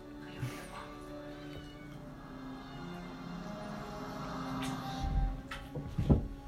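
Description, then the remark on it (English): A male cat meows in drawn-out, wavering cries, with no one talking, and a couple of soft thumps near the end. “About that cat. He's acting real fucking nice.”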